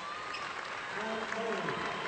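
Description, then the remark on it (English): A small crowd of Centerville family members claps steadily for a senior basketball player leaving the game after his fifth foul, the applause a dense, even patter while a man talks over it. “And he gets a nice round of applause from the Centerville folks.”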